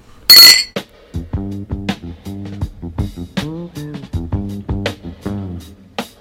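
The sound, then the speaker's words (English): A bright, sharp clink of glasses rings out at the start, followed by a short, upbeat run of plucked musical notes with crisp percussive hits. No one speaks. “clink us out of here.”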